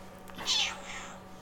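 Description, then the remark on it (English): A single drawn-out cat meow, rising then sliding down into a longer wavering tail, fairly loud over a faint, steady low hum. “Yeah, it was like a meow-woo.”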